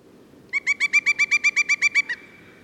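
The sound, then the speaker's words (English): A pileated woodpecker calls a rapid, evenly spaced series of about a dozen loud, ringing notes. The notes rise slightly, then stop abruptly over a faint low background rumble. “And then here, listen to how similar it is to the pileated woodpecker.”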